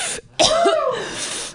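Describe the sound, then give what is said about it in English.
A single loud cough bursts out after a brief pause, then trails into a long, raspy, wheezy exhale from a person who has been vaping heavily. Nobody speaks. “I've been smoking so much vape I can't even cough.”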